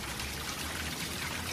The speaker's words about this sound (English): There's a large stone fountain directly in front of the Athenaeum with the wrought iron fence coming up to it on either side. Right. So it basically abuts the sidewalk. Yep. Maybe 10 feet tall, about 6 feet wide, and there's a steady stream of water